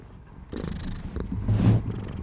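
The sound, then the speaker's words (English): A cat purrs right up against the microphone, a low, continuous rumbling vibration that swells slightly louder toward the end, with no talking over it. “Is that where the purr comes out?”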